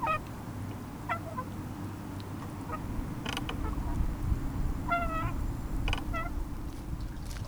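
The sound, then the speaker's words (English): A metal for-sale sign creaks in short, repeated squeaky bursts, some rising and falling in pitch, over a steady low rumble of melting snow trickling down a drain. No one speaks. “I soon hear the creaky for sale sign again and the snow melting down the drain.”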